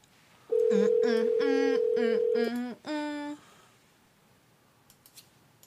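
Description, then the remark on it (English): A phone line ringing on an outgoing call: one long, steady electronic ring tone, fairly loud, with brief voice-like sounds over it, then near silence. “It's ringing now.”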